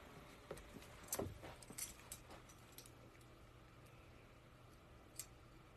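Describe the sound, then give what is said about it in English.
A cluster of bright metallic key jingles and clinks in the first couple of seconds, then a single clink later, set against a steady low rumble like an idling car. “My key.”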